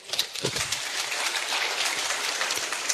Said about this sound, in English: And thanks to the leadership of the Right Honourable Speaker. We can clap for him.